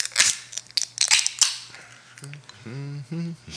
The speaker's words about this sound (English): The only way to see what we have in store is probably grabbing the can and grabbing the glass. Let's do it. And let's open her up.